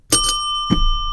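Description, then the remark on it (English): A bright metallic bell, rung to buzz in for a question, rings twice in quick succession, loud, its clear tones sustaining and ringing out afterward. “Do you want to like buzz in or something? Like, yeah, hit a bell. You can use my bell.”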